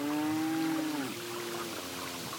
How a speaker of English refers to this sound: Sounds like there is a farm near this stream. Did you hear the cow mooing in the distance?